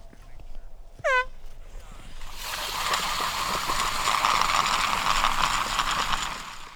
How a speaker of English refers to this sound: When the second air horn sounded through the crisp March air, 4-inch hand augers simultaneously cut through the Wisconsin ice.